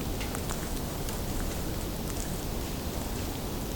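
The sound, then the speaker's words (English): Faint, irregular crackling and ticking of birds in a tamarack (larch) tree picking apart small tamarack cones, with some crackling from a campfire at a nearby campsite, scattered over a steady hiss with no voices. “Picking apart the smaller tamarack cones.”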